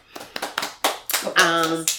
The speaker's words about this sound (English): I think we've done a fantastic job. And you know, clap hands for yourself.